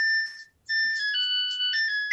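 A clothes dryer's end-of-cycle chime plays a bright electronic ice-cream-truck style melody, steady beeping tones stepping through a short tune after a brief pause, loud and alone with no talking.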